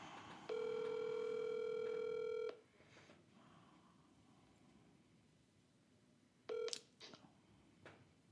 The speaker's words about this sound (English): Dialing Florida.